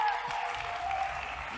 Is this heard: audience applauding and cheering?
yes